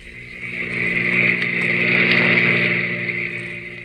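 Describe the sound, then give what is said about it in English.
A car engine roars up, peaks loudly and recedes as the vehicle speeds past, a steady droning whine swelling and fading over a few seconds with no voices. “car whipped by.”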